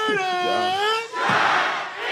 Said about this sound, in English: I'm glad he started off with a chant. The crowd was dead as fuck.